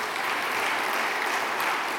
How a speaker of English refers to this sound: Isn't this place lovely? Got the Christmas tree up, the candles. You can clap for that. That's good. We can clap for that.